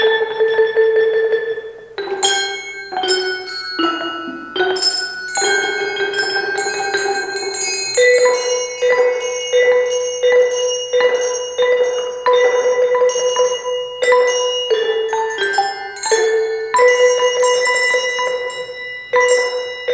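A children's bell choir plays handbells in a slow melody, each bright bell strike ringing out and overlapping the next in a steady, sustained sequence with no talking.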